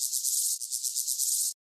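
A grasshopper stridulates by rubbing its legs against its wings, a dry, high-pitched rasping buzz with faint rhythmic pulsing, heard alone for about a second and a half before cutting off abruptly.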